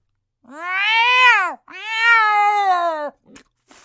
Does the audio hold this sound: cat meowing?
yes